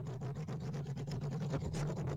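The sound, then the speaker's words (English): Scissors rubbing against a microphone make a steady, loud scraping and rustling noise with a low hum underneath, broken by quick irregular scratchy strokes throughout. “That is the scissors that I found here that I was going to stab myself with. rubbing against the microphone.”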